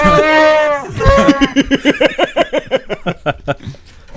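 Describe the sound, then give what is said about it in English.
A loud creature roar from a Chewbacca soundboard, lion-like, opens with a sustained throaty bellow, then breaks into a rapid run of pulsing, warbling growls that gradually fade. “Is that a lion? Chewie's lion now?”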